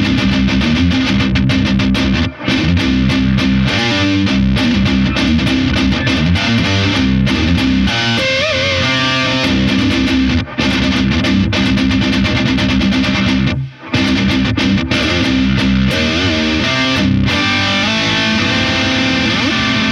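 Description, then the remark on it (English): Heavily distorted electric guitar through a Soldano amp on its third channel, all controls set at 2 o'clock, plays loud, dense chugging riffs and chords, with a few brief breaks between phrases and no voices. “And that third channel is the Soldano.”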